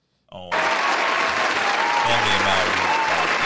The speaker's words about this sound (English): So much respect for man. Round of applause for Serena Williams.